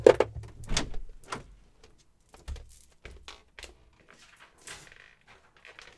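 A door clicks and swings open, followed by scattered rustling and crinkling as a printed 8x10 sheet of paper is pulled off a wall, with brief handling noises and no talking.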